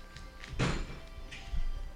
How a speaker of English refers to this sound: Wow, she slammed the door!